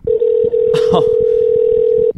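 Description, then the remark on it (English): A steady, loud telephone ringback tone hums for about two seconds, one unbroken ring from an unanswered outgoing call to a McDonald's in Fayetteville, with a brief burst of background noise and faint voices partway through. “Oh, it didn't answer. I don't think McDonald's answers phone calls.”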